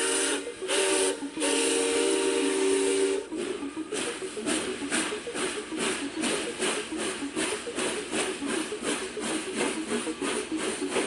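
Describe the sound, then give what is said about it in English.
A loud, harmonic steam whistle sounds for about three seconds, then a steam locomotive starts chugging with steady, rhythmic hissing chuffs that continue as the train pulls away. No one speaks. “Welcome aboard the time traveling train, folks.”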